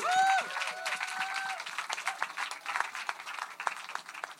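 An audience breaks into steady applause, a dense patter of many hands clapping at moderate volume, with a few high cheers and whoops rising over it in the first second or so.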